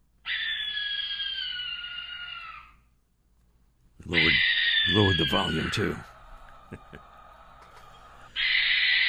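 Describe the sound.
A barn owl's harsh, hissing scream repeats in long, loud drawn-out bursts, three in all, with a person speaking briefly over the second one before the final screech cuts in.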